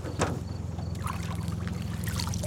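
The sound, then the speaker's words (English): A hand splashes into river water and pulls up dripping Hydrilla waterweed, with trickling and sloshing over a steady low boat motor hum. “I'm just going to reach down and grab some here.”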